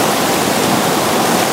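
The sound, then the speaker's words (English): Fast-moving creek water rushes steadily, a dense, unbroken roar of churning flow that fills the short stretch, loud and even with no voices. “While no one knows for sure what happened, it's believed she was swept up by the creek's fast-moving water.”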